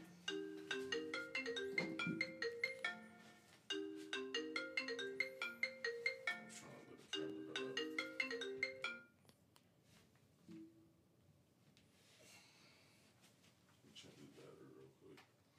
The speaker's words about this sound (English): Man, you might as well answer the phone.